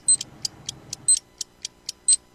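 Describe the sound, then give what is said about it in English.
A mechanical timer ticks in a steady, quick rhythm, with a brighter ringing tick recurring about every second; a faint low murmur sits underneath for the first second, then only the clear ticking remains. “Oh, you can keep the timer going.”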